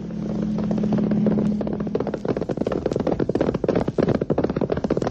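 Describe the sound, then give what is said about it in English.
Rapid, drumming hoofbeats of a galloping horse pound steadily, building out of a low droning hum and continuing in a fast, uneven clatter. No voices. “On horseback.”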